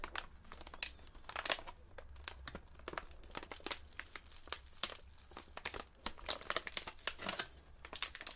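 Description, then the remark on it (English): Crisp Triple M Stick Spicy roasted seaweed snack being handled, with dense, irregular crinkling and crackling bursts and sharp crunchy snaps throughout, fairly quiet overall and no talking. “It sounds very crunchy.”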